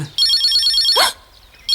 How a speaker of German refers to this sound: Kriegt euch mal ein, ist nur mein Handy.